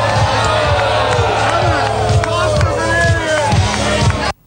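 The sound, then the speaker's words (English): A loud, dense crowd of press reporters booing Donald Trump, many voices overlapping in a sustained jeer, with a steady thumping music beat underneath, cutting off abruptly near the end. “That's the press corps booing him.”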